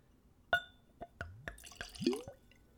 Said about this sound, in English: All right, I've got a clean Glencairn, which is a nosing glass. It's a whiskey glass I use for all my tastings, and we'll do a pour.